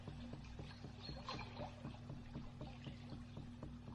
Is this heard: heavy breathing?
no